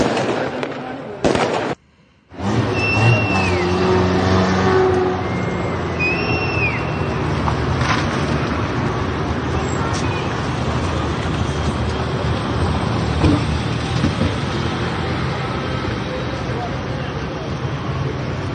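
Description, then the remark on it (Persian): Cars move through a loud, crowded street celebration in Saqqez, with dense traffic and crowd roar, scattered firework bangs, and a few whistling tones, after a brief drop-out near the start. People are celebrating the government's expulsion from the UN Commission on the Status of Women. “دارن با ماشین میرن، باز آتش بازیه.”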